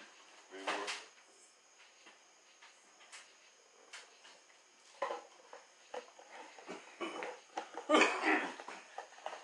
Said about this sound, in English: You know, he coughing. You ain't gonna cough like that for the time.